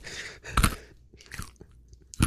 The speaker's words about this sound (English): Let's just fill out that whole minute and a half with her eating the nerds. Yeah, let's just do that.